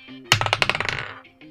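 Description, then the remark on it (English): Dice rolled for a perception roll clatter across a table: a sharp initial hit, then a quick, irregular run of bright clicks that slows and fades within about a second, with a faint low hum underneath. “The dice was on 17 and then moved to 3.”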